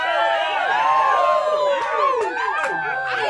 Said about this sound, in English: Let out a big old yell right now. Woo!